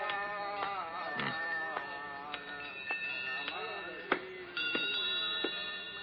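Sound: many bells ringing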